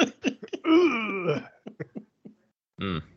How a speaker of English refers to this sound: Clear my throat.